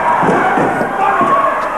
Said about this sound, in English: Oh! Knocks the set over.